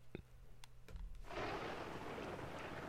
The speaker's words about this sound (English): Yep, Monster Fest storm that came in.